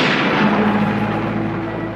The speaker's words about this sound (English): Ah! Thunder!